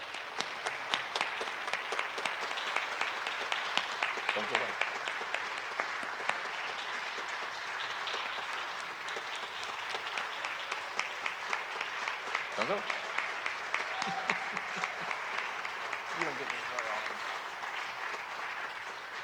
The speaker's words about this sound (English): Give him a round of applause if you would.